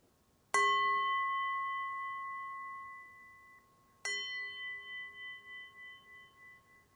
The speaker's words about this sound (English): And then I'll go ahead and close the practice by ringing a bell. And when I do, feel free to close in whatever way feels good for you.